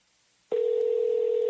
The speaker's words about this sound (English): But, yeah, I'm going to call somebody. Let me see if my homegirl answers the phone. Let's see.